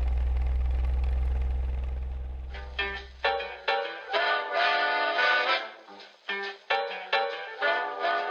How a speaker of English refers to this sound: Do you hear that whistle down the line? I figure that it's engine number 49.